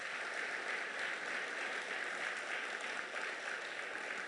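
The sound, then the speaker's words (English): An audience at a Christmas service claps together as a clap offering to the Lord, in a dense, sustained burst of applause, steady and fairly loud for several seconds with no pauses and no voices standing out. “Let us give a mighty clap offering unto the Lord.”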